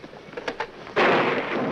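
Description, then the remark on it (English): A few faint crackles, then a sudden loud thunderclap from a storm bursts in and rolls on as a broad, sustained rumbling roar that stays strong to the end. “This storm is worse upstate.”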